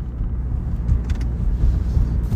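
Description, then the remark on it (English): Steady low rumble of a car driving on a road behind a salt-spreading truck that is spitting salt onto it, with continuous engine and tire drone and a few faint, brief gritty ticks in the middle; no one speaks. “Oh, fuck, this salt truck's fucking me up, dude. Fucking spitting salt on.”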